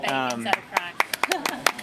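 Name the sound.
applause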